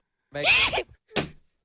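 A loud human sneeze with a voiced, horse-like snorting quality: a long, breathy blast followed by a shorter, sharp second burst. No talking.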